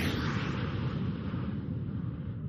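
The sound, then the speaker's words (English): A voice imitates an airplane with a steady, breathy roaring rumble held for about two and a half seconds, fairly loud, with no words. “I've been going airplane.”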